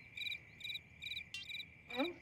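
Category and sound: insect, crickets chirping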